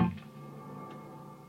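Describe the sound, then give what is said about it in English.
A single electric guitar note plucks sharply, then a bloom reverb swells up quickly behind it in a fast fade-in and holds as a steady, shimmering wash, fairly quiet, with no voices. “You'll hear my initial guitar signal go through, and then you'll hear this really fast, almost fade in of the reverb.”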